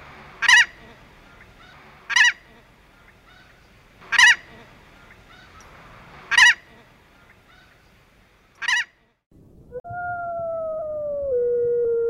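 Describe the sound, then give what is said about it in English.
Emperor goose, also called beach or painted goose, a bird native to Alaska, calls: five loud, sharp honks spaced about two seconds apart, then a steady sustained tone takes over near the end. No one speaks. “Today's episode, sponsored in part by a native Alaskan, the Emperor Goose, also known as the Beach or Painted Goose.”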